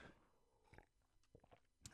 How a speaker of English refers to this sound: Let me get a little sip of water here before we get into this.